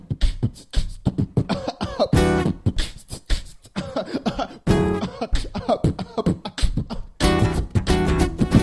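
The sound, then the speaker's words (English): Human beatboxing: a fast, steady stream of punchy vocal kicks, snares and hissy hi-hat sounds, with cough-like bursts woven into the beat. It's loud and continuous, with no talking. “It's the beatbox. The human beatbox.”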